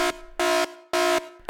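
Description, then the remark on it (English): A loud, brassy alarm horn, used as a 'dad joke alarm' sound effect, sounds in repeated harsh blasts, each about a quarter second long with short gaps between, steady in pitch and buzzy, with no voices. “Ugh, that pesky dad joke alarm gets me every time.”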